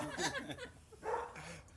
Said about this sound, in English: Just for the listeners who may be listening, we are outside here, and there's a dog next door that seems to be inspired by our words.